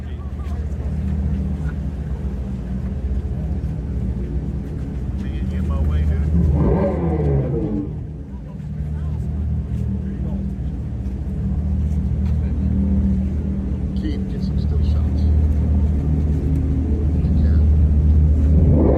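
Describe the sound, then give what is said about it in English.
A car is revved while a speaker emits a fake engine and exhaust noise: a deep, steady low rumble rising in a sweeping burst midway before settling back into a loud, droning hum with a slightly artificial, speaker-like tone. “They're going to rev it, and you're going to hear the engine noise, or what they are trying to pass off as engine noise.”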